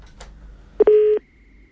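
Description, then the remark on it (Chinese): A short electronic phone-line tone as a call comes in to the hotline of the Waikato Chinese Voice radio station: a brief beep followed by a steady, loud tone lasting about a third of a second, then quiet with a faint lingering hum. “我们看到有一电话接进来，我们先接一下。”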